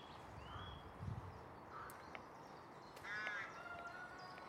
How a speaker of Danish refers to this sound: To forskellige, lidt større fugle. Vi har rågekolonien.